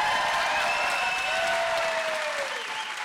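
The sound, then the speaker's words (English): An audience claps steadily in a dense wash of applause that stays loud throughout and tapers only slightly toward the end, with faint whistles or cheers riding over it. “I knew that was an applause line.”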